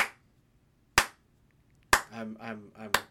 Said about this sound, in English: I'm slow clapping my applause there.